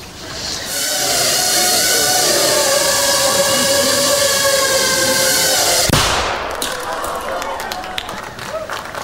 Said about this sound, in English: That little bang is enough to penetrate the skull and destroy the contents.